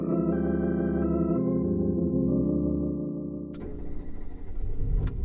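A car engine hums steadily and winds down as the vehicle slows to a stop, followed by a burst of rustling, clunking noise. No one speaks.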